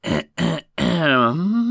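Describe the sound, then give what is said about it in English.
A loud throat clearing: two short gruff bursts followed by a longer, drawn-out voiced rasp whose pitch dips and rises at the end. No speech. “So what does he do? Clear his throat loudly?”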